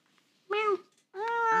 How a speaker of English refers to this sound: Meow.